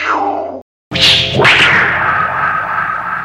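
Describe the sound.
A voice imitates a web-shooting thwip: after a brief silence comes one loud, sharp whooshing thwack with a rising swish, trailing into a sustained hiss.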